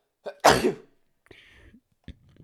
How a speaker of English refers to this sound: hold on, I gotta sneeze.